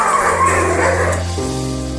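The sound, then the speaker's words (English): A pack of husky dogs at a husky dog ride in North Wales yips and barks excitedly in a dense, overlapping chorus, fairly loud, with a steady low hum running underneath. “In this episode, we'll be around the east part of North Wales to bring you a taste of what the area has to offer, from steam railway trips to husky dog rides.”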